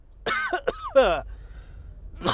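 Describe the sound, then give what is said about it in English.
A few harsh coughs in quick succession, the last one trailing into a rough, throaty vocal sound, followed by a brief pause and another breathy burst. “I had to cough out that frequency, dude.”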